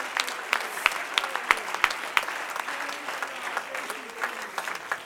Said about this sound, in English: Oh, clap your hands unto the Lord and give him.